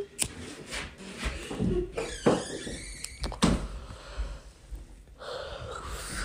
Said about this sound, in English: Go ahead in there. Close my door